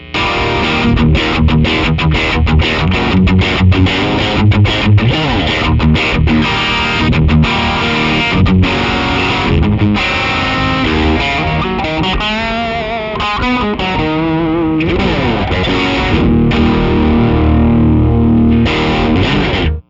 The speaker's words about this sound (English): So this is the clean sound. Here's mine. I'm gonna play the Riot, but here's my clean sound for the Jazzmaster. And this is the bridge pickup, so it's going to be, you can hear the buzzing.